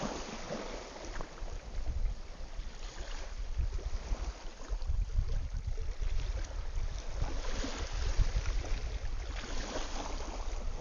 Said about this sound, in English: Just hang on, listen to the waves, and I'll be back in a few seconds.